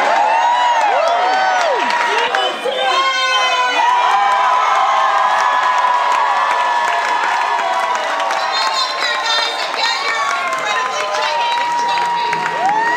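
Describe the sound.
An excited crowd at the Battle of the Family Bands at the Bowery Ballroom cheers and screams nonstop as the winner is announced, with many high-pitched voices, shouts and whoops overlapping at a steady, loud level throughout.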